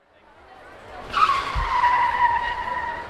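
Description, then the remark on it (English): A fast car's tires squeal loudly in a long, sustained screech as it skids to a halt on arriving, with a low thump partway through, with no talking. “Oh, it seems that Zane has just arrived in his fast car.”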